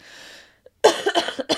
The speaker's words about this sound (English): Okay, you got a big loogie up that time.